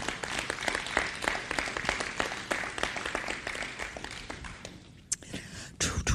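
A crowd claps steadily as an applause offering to the Lord, in dense, overlapping applause that holds for several seconds, briefly thinning near the end before another burst of clapping rises again.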